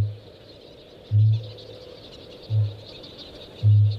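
Deep, resonant kākāpō booms, made as the birds inflate themselves to attract females, pulse out about once every second or so in a forest, four low hollow thuds repeating steadily over a constant hiss of background noise, with no one speaking.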